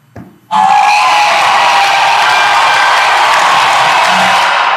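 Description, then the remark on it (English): After a brief quiet moment, a loud burst of crowd cheering and applause erupts and holds steady, a dense roar of clapping and whoops with no talking over it. “Let's clap for that, man.”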